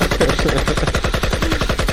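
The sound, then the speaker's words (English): Rapid automatic gunfire sound effect, a steady burst of sharp, loud shots fired in quick succession for about two seconds with no talking over it. “Hey, I'm dropping the guns too, y'all.”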